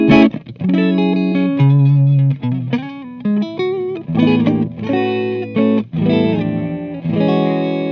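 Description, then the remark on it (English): A distorted electric guitar, a jazz-model guitar that buzzes everywhere, plays a loud, sustained riff of rich, buzzing chords and notes, shifting pitch every half second or so with brief gaps, no voices present. “This is like the one guitar I'm always hesitant to use in the studio because it just buzzes like everywhere.”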